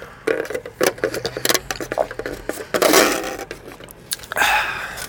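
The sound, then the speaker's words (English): A styrofoam cup is handled, giving off irregular squeaky scrapes and crinkly rubbing bursts with brief pauses between them, fairly loud and with no talking. “You can hear the. I got the styrofoam cup killing the environment.”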